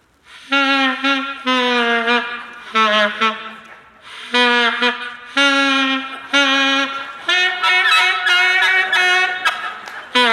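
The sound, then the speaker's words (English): Loud, honking saxophone notes blurted out in short, uneven bursts, with wobbly pitch and a few longer wavering tones, played clumsily like a beginner struggling with the instrument. “Show me how that instrument sounds in the hands of a poor musician.”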